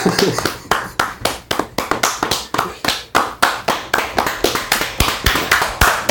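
crowd, applause

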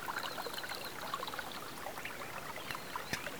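nature, brook water flowing

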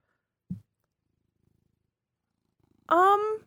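animal, cat purring

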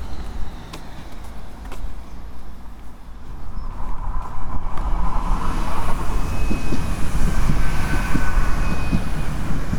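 vehicle, train passing

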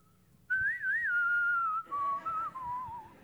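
human body sound, person attempting to whistle

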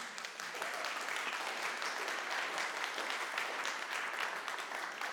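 crowd, audience clapping

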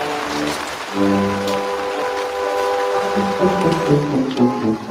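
nature, heavy rain falling

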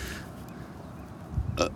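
human body sound, burp

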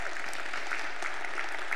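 crowd, audience applause

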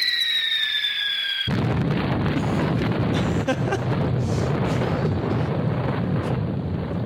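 sound effect, long explosion sound effect

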